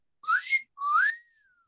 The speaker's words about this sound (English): Sorry. I thought your whistle was better than mine.